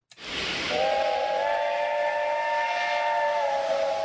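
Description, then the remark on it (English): A loud steam train whistle blows in one long sustained shriek over a broad hiss of escaping steam, holding steady for several seconds with no talking. “Okay, I'm going to do the train intro.”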